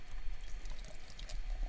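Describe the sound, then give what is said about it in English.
Blood Orange India Pale Ale (4.8% ABV) from Roosters Brewing in Ogden, Utah, pours steadily into a glass, a continuous fizzing gurgle with small splashes and bubbling throughout, and no voices. “And the pour.”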